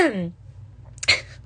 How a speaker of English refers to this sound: I have this like hacking cough right now. I'm not sick.